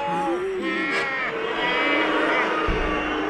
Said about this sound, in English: They're booing you, Ranger Doug.